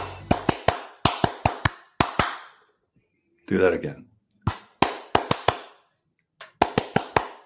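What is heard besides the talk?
rhythmic hand claps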